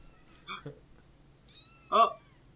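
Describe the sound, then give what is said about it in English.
A cat meows twice, a short chirpy call followed a second later by a louder, longer meow, with quiet background between them. “A kitty cat.”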